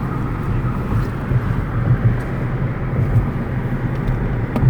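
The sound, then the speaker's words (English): A steady, loud low rumble of a car driving along a damaged street, with uneven thumps and jolts breaking through the continuous road and engine noise. No one speaks. “Damn, I'm like, damn, I just paid the car off. Keep going. Let's slow down a little bit.”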